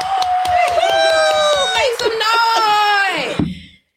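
A loud, sustained whooping cheer rises and wavers over a steady patter of clapping, then cuts off abruptly, leaving a brief moment of silence at the end.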